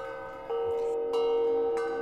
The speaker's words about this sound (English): There is a noise from outside of this restaurant, this calf. Sounds like a bell ringing.